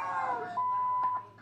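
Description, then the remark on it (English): A phone ringtone sounds as a steady, high-pitched beep held for about half a second, followed by a couple of short bleeps. It is moderately loud, over faint background noise. “Make up your phone's ringtone.”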